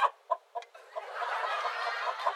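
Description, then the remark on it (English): A chicken clucks: three or four sharp, separate clucks at first, then a steady run of busy, rapid clucking that continues to the end. “You know that I love you, baby. There's no other chick for me. Come here.”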